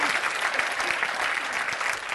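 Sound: audience clapping hands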